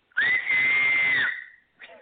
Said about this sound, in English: So I learned this like years ago in elementary school. You know, people can whistle with one hand. I have to do it with two. But I don't know if it's going to be too loud. But I can totally do it for you now. So here it goes. 3, 2, 1.